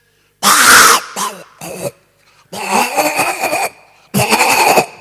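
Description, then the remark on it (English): A person imitates a pig with loud, harsh, raspy grunts and snorts in five bursts: a long one, two short ones, then two longer drawn-out squeals, with brief silences between. “You didn't know I could make sounds like pigs, you see.”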